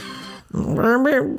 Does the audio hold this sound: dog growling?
yes